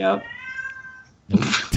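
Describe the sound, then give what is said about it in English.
A cat lets out a drawn-out, whiny meow, followed by a second shorter, rougher cry with a brief burst of noise at the end. “Apparently, my cat wants us to end this podcast.”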